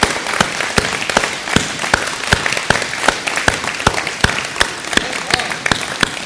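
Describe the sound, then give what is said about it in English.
An audience gives the moms a round of applause, clapping steadily for several seconds, a dense wash of many hands clapping, with one set of loud, sharp claps cutting through in a regular, even rhythm. “Could we get the moms to stand up before we start and just give the moms a round of applause, please?”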